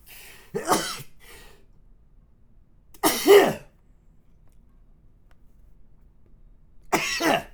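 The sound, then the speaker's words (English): Three sharp, explosive sneezes burst out, spaced a couple of seconds apart, each brief and forceful against a quiet background with no talking. “I'm about to sneeze, so I just wanted to warn you ahead of time.”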